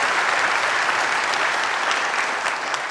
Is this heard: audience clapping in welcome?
yes